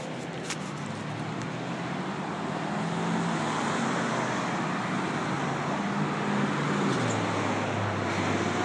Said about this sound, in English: I'm walking across this large space where traffic is coming up on me. The traffic is driving up on me.